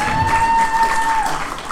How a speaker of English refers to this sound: Simply applause.